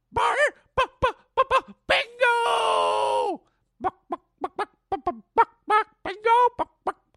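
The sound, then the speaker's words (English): A person imitates a clucking chicken with a quick series of sharp, pitched clucks, a drawn-out warbling squawk in the middle, then more choppy clucks, loud with no other sounds. “chicken, buck, buck, buck.”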